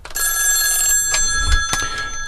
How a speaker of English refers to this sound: I got a phone call coming in. Let me take this call, y'all, see who this is.